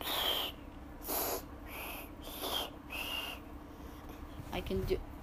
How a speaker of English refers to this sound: I can't whistle, it's just that you can hear, there's like air overcoming it. Whenever one of us has to use the whistle, the whole pool turns inland.